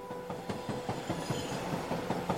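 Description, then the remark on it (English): A rescue train bound for the Florida Keys rolls steadily along railroad tracks, its wheels beating out a quick, regular clickety-clack over a continuous rumble, fairly loud with no voices. “The rescue train managed to arrive in the Keys in the evening.”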